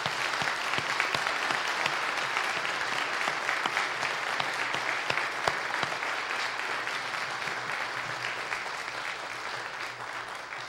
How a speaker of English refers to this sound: This concludes our graduates from the class of 2020. Let's give them a round of applause.